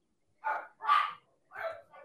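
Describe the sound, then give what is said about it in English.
Two dogs bark at a friend arriving at the house in the evening, in a quick run of four sharp barks, the last one shorter and softer, with no talking over them. “Yeah, I just have a buddy coming over this evening, and I think he's here, so I'm telling him to feed the dog treats and they'll like him.”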